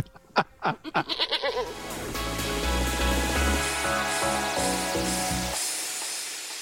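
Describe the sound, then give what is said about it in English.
A goat bleats in a quick series of wavering, stuttering cries, then loud rhythmic music kicks in and plays to the end. “I'm not sure I'm a subscriber to Goat Zoom, but hey, let's give it a go. Goat Zoom.”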